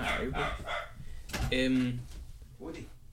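A dog barks a few times in short, uneven bursts, with one longer whining yelp in the middle, moderately loud against background noise.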